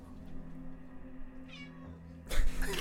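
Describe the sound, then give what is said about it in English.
A female cat meows, a short wavering cry in the middle, followed by a louder, harsher burst of sound near the end. No one speaks. “The fact that she's meowing so much is very odd.”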